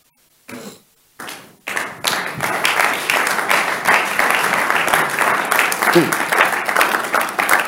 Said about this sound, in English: You see the way you are clapping?